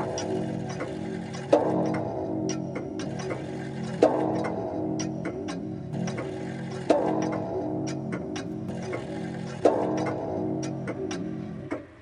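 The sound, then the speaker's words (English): An ebony clock standing in a hall strikes four times at a slow, steady pace, each resonant chime ringing and lingering into the next, with faint ticking audible between the strokes. “And anon, there strikes the ebony clock which stands in the hall of the velvet.”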